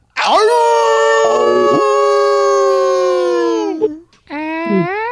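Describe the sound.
A man in Virginia imitates a wolf, letting out a loud, long howl held for about four seconds, then breaking off and launching straight into a second howl.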